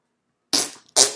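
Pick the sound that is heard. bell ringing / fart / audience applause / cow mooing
fart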